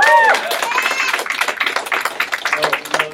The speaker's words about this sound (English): Yet again, we golf clapped the miraculous word of God.